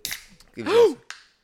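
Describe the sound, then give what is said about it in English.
A fizzy drink can cracks open with a sharp snap and a brief fizzing hiss, followed by a rising-and-falling vocal exclamation and then one more short, crisp click. “yeah, crack it open.”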